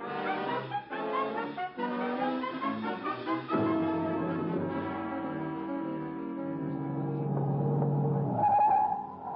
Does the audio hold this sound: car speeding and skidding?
yes